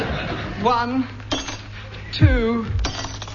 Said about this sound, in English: Now a little melody using 3 ordinary glasses of water.